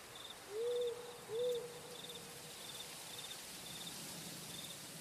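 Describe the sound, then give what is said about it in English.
On a wet night, an owl gives two soft hoots in quick succession in the distance, over steady high cricket chirps and a faint hiss of wind rustling through the trees. “you smell the wet night and hear the wind rustling through the trees, the occasional owl hooting in the distance.”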